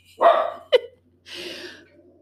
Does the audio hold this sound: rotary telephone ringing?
no